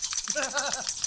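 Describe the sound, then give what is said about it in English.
Several contestant buzzers from a comedy game show's buzz-in system go off at once, a jumble of overlapping warbling, bleat-like tones that wobble in pitch and last about a second at a moderate level. “To answer a question for points, our comedians must buzz in using our very high-tech buzzer system.”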